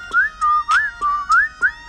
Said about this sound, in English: But he don't do like I do. I just whistle cause I'm cool.